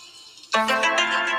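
A Nokia brick phone ringtone melody bursts in loudly after a faint quiet start, its bright, buzzy synthetic tones stepping through a short tune with no talking over it.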